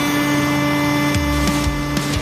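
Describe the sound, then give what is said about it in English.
A train crashes through vehicles: a steady, heavy mechanical hum with about five loud crunching, splintering impacts in quick succession, each a short burst of smashing metal and debris. No one speaks. “I'm glad I wasn't in one of those cars getting plowed by that train.”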